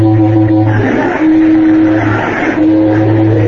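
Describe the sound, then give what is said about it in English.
A car horn honks three long, steady blasts with brief gaps between them at the Mountain View Auto Court cabins, to bring someone out; a loud, buzzy, low-pitched tone over the hum of an idling engine. “Try the other one.”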